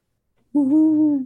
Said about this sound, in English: Muslin mist rising from the cotton rows, the moon, a lye-washed sheet, and from the boughs of pine and pin oak, the owl's lonely mourn.